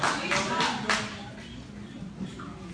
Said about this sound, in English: It's crazy that we're clapping for that, right?